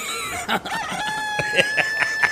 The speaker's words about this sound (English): Speaking of cock-a-doodle-doo.